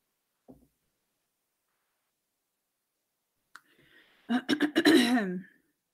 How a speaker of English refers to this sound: Again, sorry, I keep having to clear my throat.